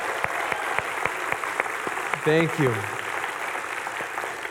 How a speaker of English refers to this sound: If you went, everybody that went to Royal Family Kids Camp, would you stand? Come on, we need to clap a little more. That's so cool.